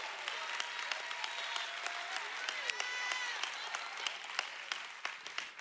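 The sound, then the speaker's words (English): An audience claps steadily during a sermon for several seconds, a dense, even patter of many hands with a few voices calling out underneath, thinning slightly toward the end. “Hey, if we're gonna clap, let's take 3 seconds here.”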